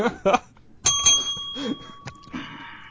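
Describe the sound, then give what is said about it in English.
A single bright bell, rung to mark the start of a conversational tangent, sounds just under a second in, its clear tone sustaining and fading over the next two seconds. Brief speech precedes it, and a few faint voices and murmurs continue beneath the ring. “And since you haven't been on for a week or so, when you hear... that's the waffle bell.”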